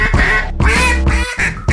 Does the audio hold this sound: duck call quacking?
yes